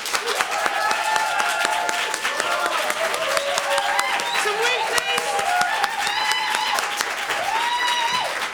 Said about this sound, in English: So we clap, basically. That's it. It's very simple, but it is absolutely crucial.